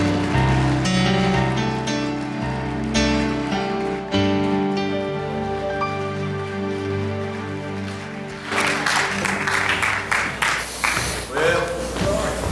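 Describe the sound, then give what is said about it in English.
Steady keyboard chords play alone, then an audience bursts into loud, dense hand clapping for Pastor Vince Fenson that carries on for the last few seconds over the continuing music. “Would you please put your best hand clap together for Pastor Vince Fenson?”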